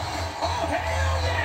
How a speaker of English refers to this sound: By the way, everyone watching, as you notice, the crowd has yet to stop cheering.